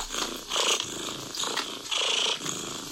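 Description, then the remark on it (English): A cat purrs steadily, its rumbling breaths swelling and fading in a regular rhythm of roughly five cycles, with no other sounds around it. “That is a cat purring.”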